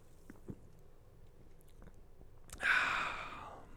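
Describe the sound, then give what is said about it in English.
A few soft mouth clicks, then a sudden hissy slurp as soda is sipped, the fizzing sound fading out over the final second. “I'm going to sip of my soda.”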